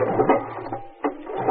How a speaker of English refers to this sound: This outboard's a bit of a puzzle to get started, but once she catches, there's no quitting it until she runs out of gas.